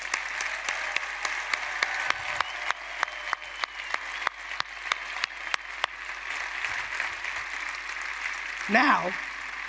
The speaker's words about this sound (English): First of all, let's clap up for the over 50 crowd that's sitting and respect our elders.